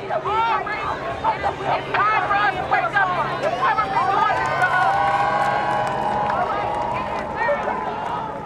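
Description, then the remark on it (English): A large crowd of protesters marching on Interstate 94 at about 10:30 p.m. shouts and calls out together outdoors, many overlapping voices rising and falling in a steady, loud din that fills the whole stretch. “At about 10:30 p.m., the marchers got on the highway.”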